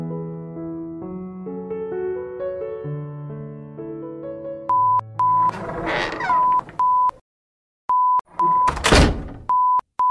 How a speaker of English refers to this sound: Beep, beep. Beep, beep. Beep, beep is our new norm. We now have set the home security alarm, so if we walk in or out of the house, the annoying beep signals twice. Beep, beep.